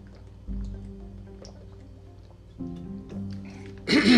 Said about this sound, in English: That's me drinking. Not that kind of drinking. It's just sparkling water.